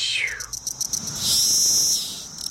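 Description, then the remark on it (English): A Magicicada cassini cicada, the species that is black underneath, giving its call: a run of sharp, high ticks that speed up, then break into a loud, shrill buzzing scream that cuts off abruptly. No voices. “And it's one that has a series of ticks and they get faster and faster. And in the end, there's kind of a little scream at the end.”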